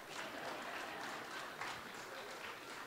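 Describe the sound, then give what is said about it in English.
A crowd applauds at the mention of Bernie Sanders, steadily for about three seconds, a dense, even wash of many hands clapping at once with no voices standing out. “This crowd seems to be interested in Bernie Sanders.”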